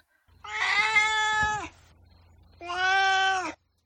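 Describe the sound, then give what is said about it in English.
A cat meows twice, two long, drawn-out, fairly loud calls separated by a short pause, with a faint low hum underneath and no talking. “now it's time for my cat's opinion. It's time for Duarte's Corner.”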